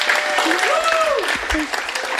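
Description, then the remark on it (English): A crowd at a Skylight Books author reading applauds steadily, a dense wash of many hands clapping at an even, fairly loud level, with a few faint voices rising through it and no pause in the clapping. “All right, well, you guys want to clap for it one more time?”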